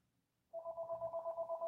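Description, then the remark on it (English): A telephone starts ringing after a brief quiet moment, a steady electronic trill that warbles in rapid pulses and stays fairly loud until the end, with no one talking. “The phone ended up coming through here.”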